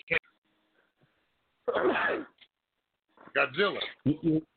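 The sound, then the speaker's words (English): A voice on a phone call comes through a thin, telephone-quality line in short choppy bursts separated by abrupt silences, as if the connection keeps dropping out mid-sentence. “You're breaking up on me.”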